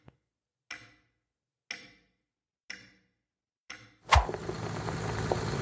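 clock ticking

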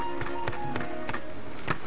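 typewriter typing

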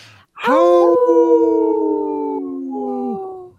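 wolf howling

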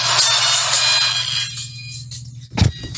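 phone ringtone

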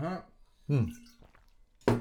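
speaker drinking water

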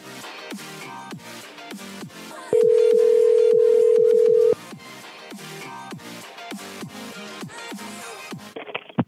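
telephone ringing

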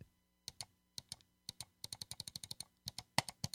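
computer mouse clicking

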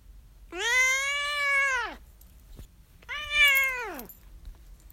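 domestic cat meowing

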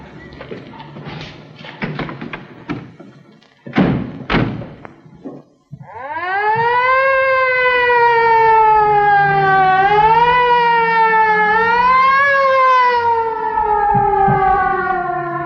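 emergency vehicle siren wailing

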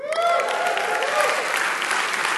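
audience clapping

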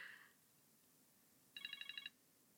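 timer alarm ringing

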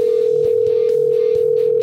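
phone call ringing tone

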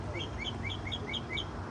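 bird chirping

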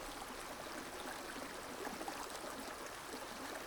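flowing river water

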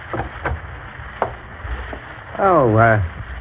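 knocking on a door

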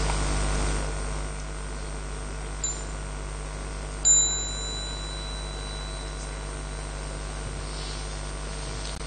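small meditation bell ringing

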